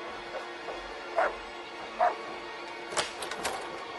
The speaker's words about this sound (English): We open with a bulldog in, like, a little cage, barking its ass off, and then this fruity neighbor who's very upset about it.